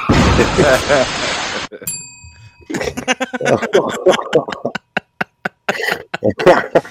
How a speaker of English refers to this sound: I'm ringing that bell twice for that one.